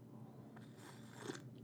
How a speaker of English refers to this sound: And let me take another sip.